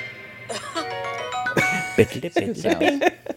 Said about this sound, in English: That cooking sound is... Mwah. Yeah. I love it. I love his little hum.